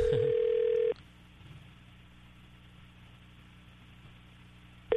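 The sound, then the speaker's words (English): A telephone call attempt during a live radio broadcast: a steady, loud dial tone sounds for about a second, cuts out to a long quiet stretch of low background hum, then starts again at the very end. “We just tried to call Barb”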